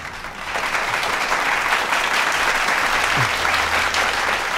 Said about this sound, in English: And let's give a proper clapping for the girls.